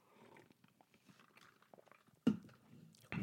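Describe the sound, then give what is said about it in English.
Someone takes a sip of water: soft, wet mouth clicks and swallowing noises, then two sudden louder thuds like a cup or bottle being handled, with no talking. “I'm just going to let you ponder on that while I take a drink of water, because I'm talking my head off, talking to myself, basically.”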